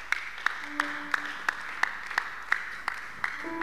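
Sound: audience clapping hands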